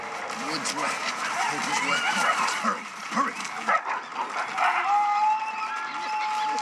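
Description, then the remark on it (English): In a film scene, about eight wolves, four on each side, flank a group and growl and snarl over one another in a dense, continuous, rumbling chorus with sharp yips breaking through, and a thin steady whine rises in the last couple of seconds. “Next, the entire group gets flanked by like 8 wolves, 4 on each side.”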